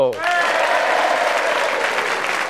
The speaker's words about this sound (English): And for our final contestant today, let's give a round of applause and a big hello